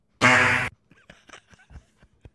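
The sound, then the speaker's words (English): A loud, buzzy fart sound effect blasts for about half a second, then gives way to faint, scattered murmurs of talk in the background. “Tom Dean, the insert fart sound, Ohio State.”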